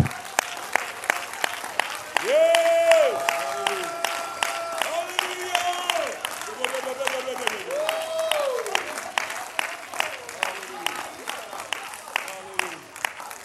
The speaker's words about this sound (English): Go ahead, would you clap your hands and just respond in any way you want to what Jesus is doing.